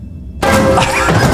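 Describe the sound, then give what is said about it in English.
After a brief low rumble, a hammer smashes into a brick wall with a sudden loud crash, followed by a sustained gritty clatter of crumbling, breaking debris. “Slams the hammer into the wall.”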